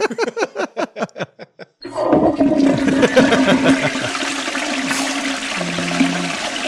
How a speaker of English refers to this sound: That's a long toilet flush. Can you imagine? Be like, you check that flapper out. That motherfucker's staying open too long.